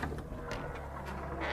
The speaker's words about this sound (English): I hear the front door slowly open.